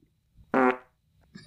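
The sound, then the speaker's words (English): A single loud, buzzy fart noise lasting about a quarter second, abrupt, followed by a brief quiet stretch and a faint rustle at the end. “There's gonna be so many farts.”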